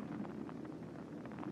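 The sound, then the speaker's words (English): Rain falls steadily at night, a soft continuous hiss with a low rumble beneath it and faint irregular patters throughout. No voices are heard. “And the rain's just on time.”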